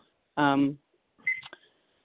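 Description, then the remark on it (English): A couple of short electronic beeps from a phone as a timer is started: one strong buzzy tone, then a pause and a higher, thinner chirp that trails off. Fairly loud, with no talking. “Just starting my timer.”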